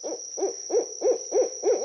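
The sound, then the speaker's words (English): An owl hoots six times in a quick, steady rhythm, each call a short low note rising and falling, clear, with no talking. “Today's Name That Sound is an owl.”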